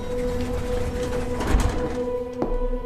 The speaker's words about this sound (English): In his penthouse apartment, Carl Grissom was pouring himself a drink when he heard the elevator behind him open.